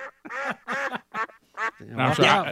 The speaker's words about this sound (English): So we've got all kinds of frogs and crickets and birds, and these are the crows that are perching up in the trees in my backyard. They're kind of loud.